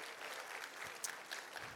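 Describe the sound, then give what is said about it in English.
An in-person church audience gives a warm round of applause in celebration, a steady wash from many hands, dense and continuous, with crisp individual claps popping out above the broad noise of the crowd. “You can give them a warm round of applause.”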